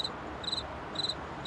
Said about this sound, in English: What the hell is that noise? Oh, that's Larry, my pet cricket.